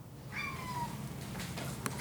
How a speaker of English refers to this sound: As many other days, I was waken up by my cat's eager shouts for food.